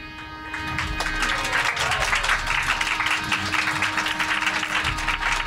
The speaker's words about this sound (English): You're all giving yourselves a round of applause. That's nice.